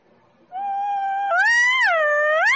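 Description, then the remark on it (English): A voice imitates an elk call, pushing from the diaphragm: a loud, high, steady tone that rises, then swoops down and back up like a siren wail, lasting about two seconds with no talking. “And you kind of make that siren noise, you know?”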